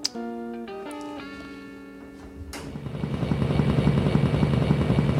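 vehicle, helicopter flying

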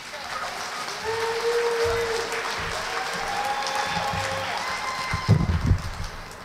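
crowd, audience applause

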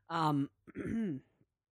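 human body sound, throat clearing

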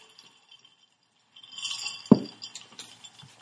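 household object, glasses clinking

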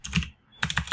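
household object, clacky computer keyboard typing

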